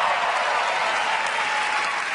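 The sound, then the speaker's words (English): A crowd claps steadily, dense applause filling the space at a constant loudness for a couple of seconds with no pauses and no voices standing out, applauding a comedian's announcement that he recently became a father. “Never as much applause on that part.”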